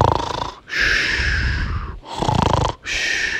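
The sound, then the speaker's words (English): A voice imitates snoring with loud, raspy breaths, alternating snorting inhales and breathy exhales in a steady rhythm of about four cycles, with no talking. “And she closed her eyes and started to snore.”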